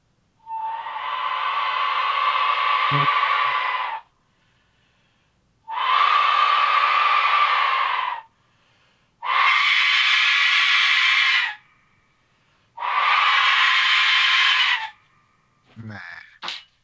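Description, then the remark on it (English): A loud whistle blown in four long, sustained blasts of steady pitch with a breathy, hissing edge, separated by short pauses, followed by a brief sputtering burst at the end. “You think that's a whistle?”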